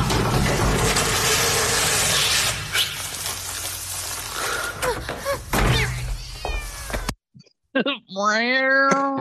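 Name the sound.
cat meowing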